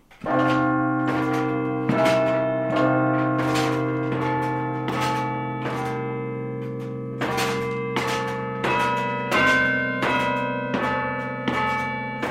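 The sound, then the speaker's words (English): A church carillon of 43 bells, each wired to a broom-handle baton played from a small stone room in the bell tower, rings out a melody, with repeated struck tones layering into a sustained, shimmering wash of overtones. The playing is loud and continuous, with no voices. “Directly above are the church's 43 bells, each one connected by a wire to one of those broom handle batons.”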